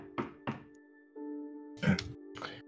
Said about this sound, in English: Knocks on the door.